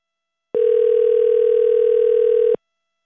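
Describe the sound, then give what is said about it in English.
A steady telephone dial tone after a call is hung up hums for about two seconds, a single continuous pitch that starts and stops abruptly, with no voices around it. “Your phone's terrible. Oh my god, hang up on.”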